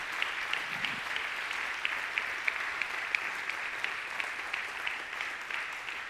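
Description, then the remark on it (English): An audience applauds people who shared testimony and have come back onto the stage: a steady, dense wash of many hands clapping at a fairly even level with small sharp claps poking out, sustained throughout without talking. “Let's give them a round of applause again for being this brave.”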